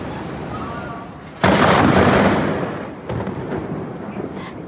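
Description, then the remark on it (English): A sudden, loud thunderclap from a summer storm moving across Ontario bursts in and rolls into a heavy rumble that fades over a couple of seconds, followed by a softer second rumble over a steady, rain-like background hiss. “Tornado warnings have now been lifted, but the risk of severe thunderstorms remain in some areas.”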